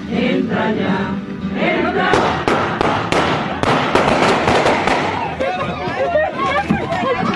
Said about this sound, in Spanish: Tiraron balazos aquí en el panteón, tiraron balazos. Hubo varios heridos. Es un funeral. Murieron 2 personas. 3 más resultaron heridas mientras velaban a un ser querido. Se trató de un ataque armado a un cortejo fúnebre